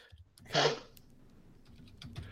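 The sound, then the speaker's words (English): Keyboard typing: a cluster of loud, rapid clacks early on, then scattered lighter key taps over a low background hum, with no talking. “My keyboard was being a little throbby.”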